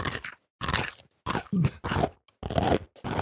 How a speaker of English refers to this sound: Anyway, let's crunch into Adventure. Crunch noise.